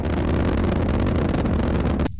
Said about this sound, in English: T-minus 10 and counting. 8, 7. Main engine start. 4, 3, 2, 1. Lift off.